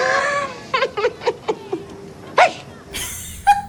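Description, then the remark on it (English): A person imitates a dog, barking mockingly at another person, with a quick run of short, sharp barks, followed by a louder, drawn-out bark and a final brief yelp. “And then he like, turns to Carlos and barks at him.”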